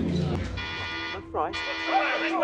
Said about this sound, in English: Sound the general alarm.